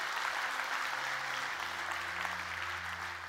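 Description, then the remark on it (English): An audience applauds for the Lord after a prayer, a dense wash of many hands clapping at once, with a low sustained organ-like tone underneath that shifts pitch partway through. “Can we give the Lord a good hand clap today?”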